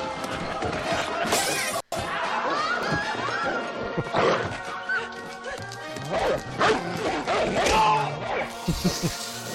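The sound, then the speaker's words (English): A small Border Terrier named Puffy barks and yips over and over, loud, in a busy, noisy stretch with voices talking in the background. “Are you the little guy making all that big noise?”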